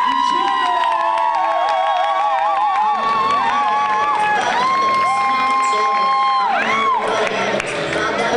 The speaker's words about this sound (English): I don't think she's been doing it as long, but this is Dominique Gellin, and this is from Homefield Comedy. Start fucking clapping for Dominique!